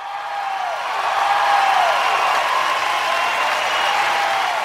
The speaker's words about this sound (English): can we get an applause cue for our mods?